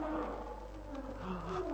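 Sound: lion roaring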